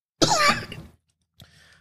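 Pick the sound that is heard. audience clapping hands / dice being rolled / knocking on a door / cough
cough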